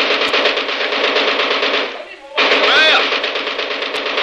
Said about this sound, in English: My God, I fix them good with machine gun. I saw them, I get machine gun. Now I show you how to fix them. This machine gun be good for them.